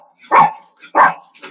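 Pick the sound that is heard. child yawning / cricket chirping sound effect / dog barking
dog barking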